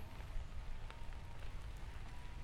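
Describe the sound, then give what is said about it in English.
Steady rain falling on a warm day, pattering on surfaces, a dense continuous wash with occasional sharper drips standing out, moderately quiet, with no voices. “But boy, this is sure is nice on a warm day to have this kind of rain coming down.”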